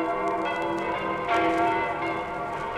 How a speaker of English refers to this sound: So it's the web-slinger versus the bell-ringer. Wow, gotta get out of the way of the sound waves of those bells. And faster, I'm a dead duck. Too late, Spider-Man. The bells toll for you.